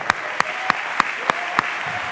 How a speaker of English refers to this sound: Put your pins down and just clap to the Lord right now for a moment.